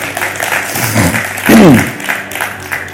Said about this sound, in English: Amen. Clap your hands, give God praise.